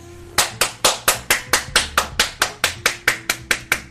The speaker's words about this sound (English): Can I get a round of applause for your homegirl?